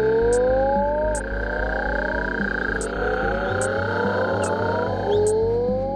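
Mexican burrowing toad, nicknamed Sapo Borracho or Drunken Toad, calling: loud, drawn-out, retching groans with sliding tones over a steady low rumble, punctuated by brief sharp clicks roughly every second, with no voices.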